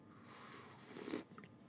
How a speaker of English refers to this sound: Sorry, slurp a little coffee there.